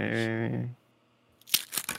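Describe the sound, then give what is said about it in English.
A voice sounds briefly, then after a pause comes a crackly burst of a Panda Express fortune cookie wrapper being torn open and crinkled, in a few sharp rustles. “opening his fortune cookie from Panda Express.”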